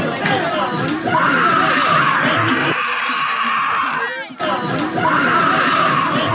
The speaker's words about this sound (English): you've seen the video of this woman screaming at the top of her lungs